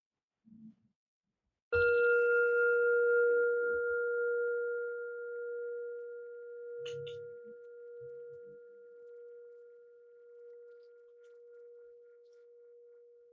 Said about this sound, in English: In a moment, I'll ring the bell to just close that little practice.